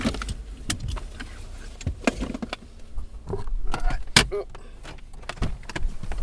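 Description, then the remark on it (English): A car pulling up to a garage and parking: a low engine rumble runs underneath a scatter of clicks, clunks and rattles, with a brief whirring tone partway through. “And so I'm pulling up right now to the garage.”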